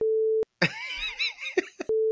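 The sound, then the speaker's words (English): A steady mid-pitched censor tone bleeps over speech, sounding twice with a garbled, warbling stretch of bleeped-out talk between the two beeps. “But, beep.”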